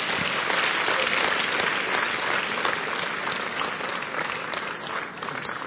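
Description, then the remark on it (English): An audience claps for Jesus steadily for several seconds, a dense, continuous wash of many hands with no distinct individual beats, holding at a fairly loud level before easing slightly at the end. “Clap for Jesus.”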